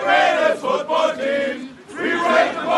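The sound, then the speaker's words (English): A crowd of Dolphins football fans, drinking beer and eating chicken wings on the eve of a game against the Kansas City Chiefs, loudly chanting the team's fight song, many voices singing together in rising and falling phrases, with a brief dip before the chant swells again. “On the eve of Sunday's game against the Kansas City Chiefs, the line to get inside was spread out several meters as fans from near and far drank beer, munched on chicken wings, and broke out into the team's fight song throughout the night.”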